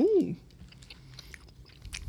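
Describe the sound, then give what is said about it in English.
Soft chewing of a chewy, taffy-like mango candy, with faint wet mouth clicks and smacks scattered through, after a short hummed vocal sound at the very start. “they're like taffy, so it's going to be a minute before we can talk”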